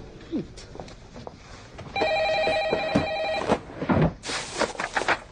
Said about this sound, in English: And then on cue, Deborah opens the door and goes, what's that? What's that? Intercom.